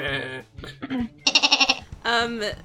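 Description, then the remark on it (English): A person's voice mimics a goat, giving a few loud bleats in quick succession, the middle one shaking with a rapid quavering tremble. “Oh, I can't do a goat thing.”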